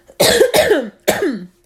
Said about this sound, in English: Excuse me, I still have this nasty cough.